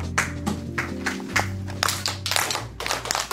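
A kindergarten teacher in a bilingual class in Tyler, Texas, claps to get the children's attention: a series of about ten sharp hand claps in a quick rhythmic pattern, some clustered together, with a steady low hum and faint tones underneath and no talking.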